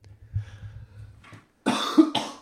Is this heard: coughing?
yes